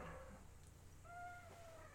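A cat meows twice, a short cry followed by a longer drawn-out one, fairly quiet against a low background hum with no one talking.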